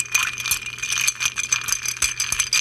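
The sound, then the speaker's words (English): A steady, rapid rattle of ice clinking against glass as a bar spoon stirs a cocktail of Carpano Antica sweet vermouth and Benedictine. It is bright and continuous, with a faint low hum beneath and no talking. “Now let's give this a good stir.”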